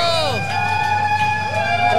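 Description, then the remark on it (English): A live crowd whoops and hollers loudly as a performer in a harness and tail walks on stage, with long voiced calls that swoop in pitch over a steady roar of audience noise. “Why is he getting booed? I don't understand.”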